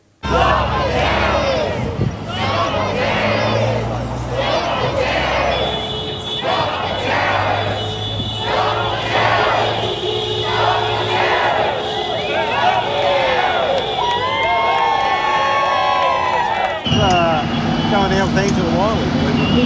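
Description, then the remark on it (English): A large outdoor crowd of farmers protesting in Melbourne against renewable energy transmission lines through farmland, arriving in tractors and trucks, shouts and cheers loudly and continuously for nearly twenty seconds, voices overlapping, with a steady low engine drone running underneath. “which is taking place in Melbourne, in which farmers have rolled up in their tractors and their trucks to protest renewable energy transmission lines being placed through farmland.”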